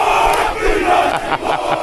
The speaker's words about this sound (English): So they show up with their Israel flags and their New Zealand flags. And they do that, their dance thing. Haka dance.